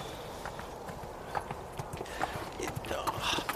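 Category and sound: animal, horse hooves clip-clopping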